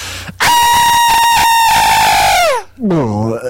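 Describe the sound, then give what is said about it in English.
Human voices imitate monster screams, a Terrorgeist and a dying Senegor: one long, loud, high-pitched shriek that holds steady before sliding down, followed right away by a lower, descending guttural wail. “I can only do a dying Senegor scream.”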